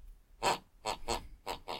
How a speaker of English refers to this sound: I realized that if I sneak into my mother's bedroom, jump up and down on her, I can make her snore to the rhythm of certain songs.